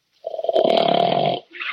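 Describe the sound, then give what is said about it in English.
A sleeping dog in the den snores: one long, loud, rasping snore with a low rattling buzz, followed by a short pause and the softer start of the next breath. “Oh, darn it. The dog's asleep.”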